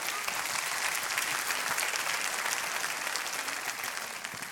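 An audience claps hands at a preacher's call during a sermon, a steady, dense wash of applause, loud and sustained for several seconds with no talking over it.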